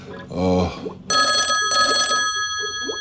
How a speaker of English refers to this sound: Oh, blimey. It's a phone call.